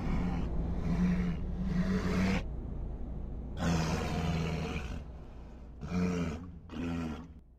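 A giant monster lets out several deep, loud bellowing roars while reaching for his club, each lasting a second or two with short pauses between, the last two bursts shorter and sharper.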